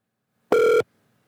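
A single short burst of a telephone ringback tone, steady and electronic, sounds clearly on its own before fading into near silence, as heard on an outgoing call to Big Fatty's show.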